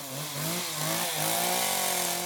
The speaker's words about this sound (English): At the end of the day, you want to be running a much lighter saw. A nice little semi-detailing saw. This is 36 cc's.